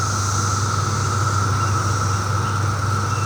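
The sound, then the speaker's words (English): A steady, unbroken chorus of cicadas buzzes at a high pitch over a low, continuous rumble of passing cars, recorded with a microphone stuck out a window in a neighborhood at about 68 degrees. The drone holds at an even loudness throughout, with no one speaking. “Now, you hear mostly just cars going by, but then there's, towards the end, it's all cicadas right there.”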